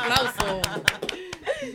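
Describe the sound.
Brief, sparse applause: roughly seven sharp handclaps at uneven intervals, mixed with voices and some laughter throughout.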